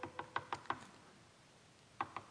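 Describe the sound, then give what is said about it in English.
Rapid knocking on a house door as Peter knocks, five quick raps in a row, a pause of over a second, then three more. The knocks sound crisp, with no voices. “What happens when Peter's knocking on the door?”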